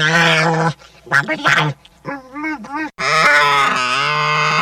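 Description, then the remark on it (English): Loud, harmonic creature vocalizations made from Asian sea otter calls modified by sound designer Ben Burtt: a long nasal wail, a few short choppy squawks, then a warbling, wavering call and another drawn-out cry, all with a strange, animal-like, processed quality and no speech. “Well, Asian sea otters? He modified it.”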